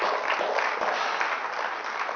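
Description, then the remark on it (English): A church audience claps steadily in applause for God, a dense, even wash of many hands applauding without pause, fairly loud and sustained, with no voices standing out. “That's the one that we need to applaud.”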